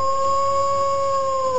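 wolves howling

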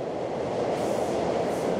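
subway train running

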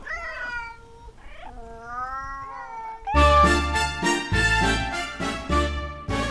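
cat meowing and caterwauling

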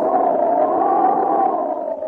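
storm wind roaring

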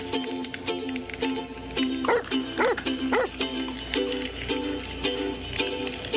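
bird dog barking

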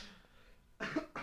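cough

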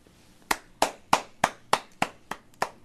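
hand clapping

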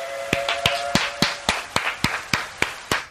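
two hand claps

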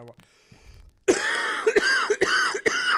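phlegmy cough

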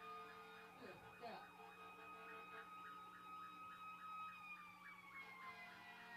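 ambulance siren passing by

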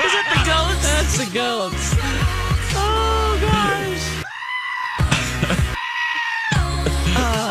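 goats bleating

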